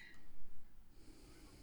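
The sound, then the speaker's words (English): A muffled, low snorting snore from a drunk man heard over a phone line swells and fades over a second and a half, thin like it's coming through a phone receiver, followed by faint breathy rasping. “And then you just start hearing this snoring on the other end of the line.”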